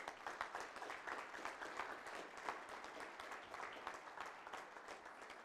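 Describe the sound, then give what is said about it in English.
A church audience breaks into steady applause for its 2019 mission work, many hands clapping in a dense, continuous patter that holds at an even level for several seconds without any voices over it. “So I think you owe yourselves a round of applause for just what we've done here in 2019.”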